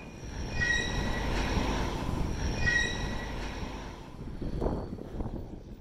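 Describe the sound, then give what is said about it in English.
High metallic squeals from rail cars being switched and sorted in a rail switching yard ring out twice over a steady, rumbling grind of wheels, the shrill tones rising and fading in bursts while heavy low clatter continues throughout. “And there's this squealing sound, right? The metal from the rail cars getting switched.”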